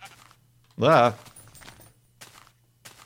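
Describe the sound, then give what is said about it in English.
A single loud, wavering sheep bleat lasting under half a second, followed by quiet shuffling footsteps and soft rustling in the background. “Let's ask this sheep.”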